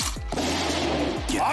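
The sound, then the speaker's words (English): A loud, sustained gunshot sound effect, with a harsh, crackling burst and a falling, sweeping tone near the start and again later, filling the whole short moment. “Grateful for this gunshot sound.”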